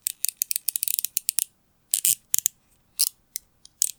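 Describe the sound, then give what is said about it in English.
A chair squeaks over and over as someone uses it to answer yes/no questions with squeaks: a quick run of short, scratchy creaks, then a few scattered ones after brief pauses, with no voices. “That was like 17 squeaks.”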